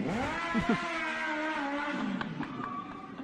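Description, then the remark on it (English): A motorbike engine, with a man riding it, revs up and down with a rising and falling whine, loud, continuing steadily for a few seconds with no one talking. “This dude legit riding a motorbike in this thing.”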